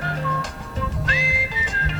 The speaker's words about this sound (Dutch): Dit is al jaren mijn ringtoon. Het is oorspronkelijk uit een film. En oh, Turks Fruit.